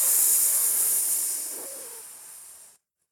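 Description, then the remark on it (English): A single sustained snake hiss, loud, a bright breathy rush of air that slowly fades over about two and a half seconds before cutting off into silence. “And that is why, from that day, snakes, when they see anyone coming, they will always hiss or rattle their tail.”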